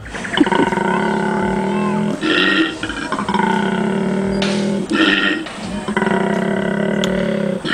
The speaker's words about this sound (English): Oh, it's a koala. What the fuck? Really? That's a koala mating call.